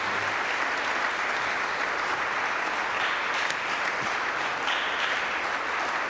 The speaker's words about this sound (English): So I'm filled with joy and gratitude for the ministry of St. Columba's, your wonderful leaders, and I wonder if you might join me in giving a round of applause of gratitude to your good clergy and lay leaders, staff.